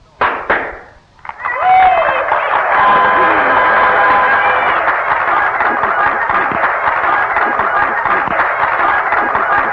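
Loud, steady applause from a large crowd for Annie Oakley's act, a dense crackle of many hands clapping that swells in after a brief pause and holds at full strength to the end.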